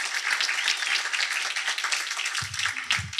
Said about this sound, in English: Could you give them a round of applause for that, please?